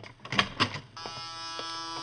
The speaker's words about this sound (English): Hey, this clinic is swell. Door buzzers and everything.